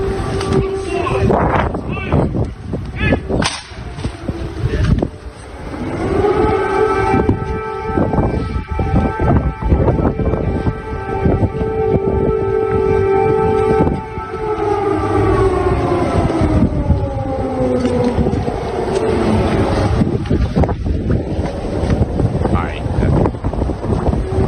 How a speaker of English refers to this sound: Man, they look so courageous just casually strolling down the street with air raid sirens going off in the background.